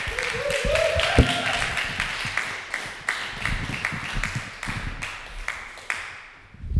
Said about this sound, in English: You guys ready for your first comic of the evening? Oh my God, love this lady. She's hilarious. Keep clapping for Elsie Howe.